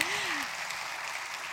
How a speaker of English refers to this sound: yes, I will clap for that.